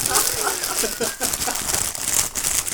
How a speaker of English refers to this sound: Crunch those pretzels. Rustle the bag.